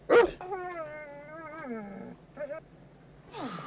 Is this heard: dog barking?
yes